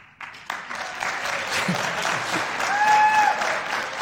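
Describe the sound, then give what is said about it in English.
An audience bursts into steady applause, many hands clapping in a dense, continuous wash that swells and holds at full volume, with a brief whistle-like tone rising above it near the end. “Chances are you've said this statement numerous times in your life, and judging by the clapping, you probably have.”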